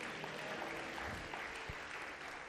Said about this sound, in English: Somebody clap your hands and say a bigger amen.